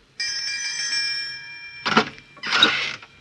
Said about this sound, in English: This must be the doorbell. Here goes.